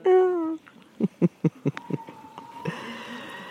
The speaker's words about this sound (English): happy crow song.